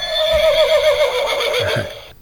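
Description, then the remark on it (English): A horse neighs loudly, a long wavering whinny that rises and trembles for about two seconds before cutting off, with a few low thuds underneath. “A horse race.”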